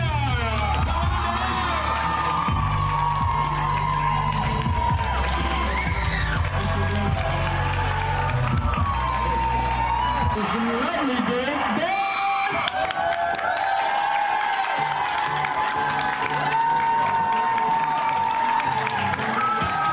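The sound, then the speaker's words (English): A large crowd claps and cheers continuously, a dense roar of applause with whoops and shouts rising over it, loud and sustained throughout. “And there are some that are deaf, and they're clapped for as well.”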